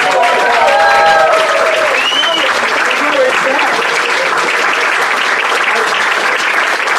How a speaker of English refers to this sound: Can we get a round of applause for you?